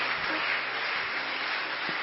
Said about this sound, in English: Stand up. Oh, I tell you, you're going to clap your hands.